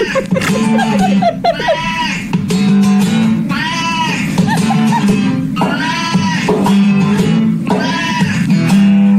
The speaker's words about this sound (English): He plays a blues riff and then he stops and the cat screams. Is the cat mad? I don't know. Like some cats just meow like that and you're like, that's not a meow.